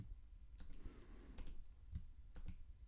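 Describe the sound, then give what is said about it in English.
A handful of soft, sparse clicks from someone typing a betting pick on a computer keyboard, spaced irregularly over a low, steady background hum, with no voices. “I switched my pick to over. I just finished typing that.”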